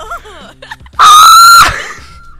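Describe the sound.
A person imitates the scream of someone who stapled her own finger: one loud, sustained, high-pitched shriek of about half a second with a steady tone, then a falling, fading tail, after some quieter wavering vocal sounds.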